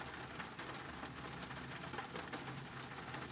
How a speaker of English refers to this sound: Can you hear it? I'm sitting in my car. It's a small car. Maybe you can hear the size of the car by the empty space around the raindrops. Can you hear that? Can you hear the space it makes out?